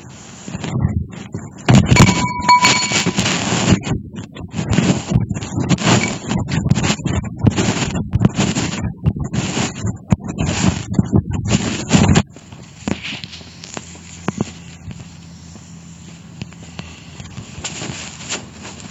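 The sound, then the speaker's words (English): A heavy dumbbell bar clanks down with a brief ringing tone, then quick, brisk footsteps thump and rustle steadily for about ten seconds as someone runs or walks briskly, before fading to a quiet, muffled background. “dropped this dumbbell bar and then started to run or walk quite briskly before the recording cleaned up a bit.”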